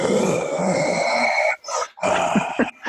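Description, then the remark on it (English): Lions growl loudly, starting with a long, rough, rumbling snarl followed by several shorter gruff bursts with brief pauses between them. No one speaks. “Lions come out.”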